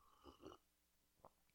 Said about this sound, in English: And let me sip my coffee, by the way.